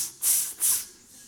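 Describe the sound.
A voice imitates a Marseille cicada by hissing intermittently through the incisors: two short, bright, high-pitched bursts in quick succession, each rising and fading, with no talking.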